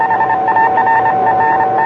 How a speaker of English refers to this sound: What's that low hum I hear? That's the carrier wave.